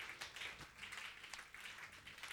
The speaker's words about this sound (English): Just put your hands together for Jesus. No, you are clapping for a God that is good because of his goodness.